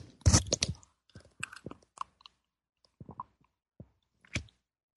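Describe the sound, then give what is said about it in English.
Quiet sipping of tea: a louder slurp at the start, then a series of short wet mouth and swallowing sounds separated by brief pauses, with no talking. “All right, I'm going to have a sip of my tea.”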